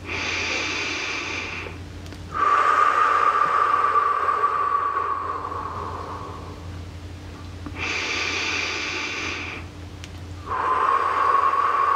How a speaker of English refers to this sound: So go ahead and close your eyes and begin by taking a couple of nice deep breaths in through your nose, out through your mouth.